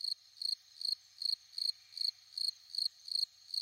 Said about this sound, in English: This is where we put the cricket. The cricket sound effect.